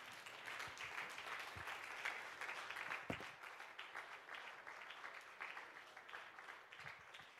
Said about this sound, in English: Could we do that for just a few more moments all over this house? Let's clap our hands and lift our voices and let's just give God a little bit of praise in this house this morning.